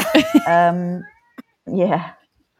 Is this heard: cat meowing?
yes